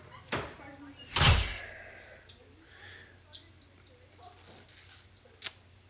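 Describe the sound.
A door swings shut with a solid thud, preceded by a brief click of the handle, followed by quieter knocks and faint shuffling, with soft background voices.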